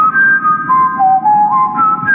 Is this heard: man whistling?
yes